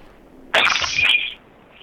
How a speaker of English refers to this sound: Your window breaking sound, it also needs to be louder, I think. I don't think it's loud enough to be quite viable. Yeah, it's not a real window, it's some guy breaking a glass.